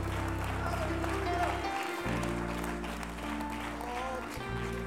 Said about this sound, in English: let's rejoice one more time with a hand clap of praise today.